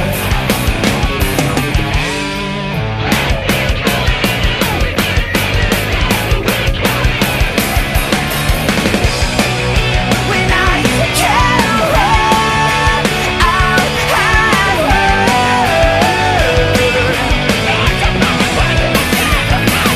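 A loud, dense heavy rock passage with pounding drums and distorted guitars, briefly dropping out near the start before crashing back in with a driving, steady beat and no talking.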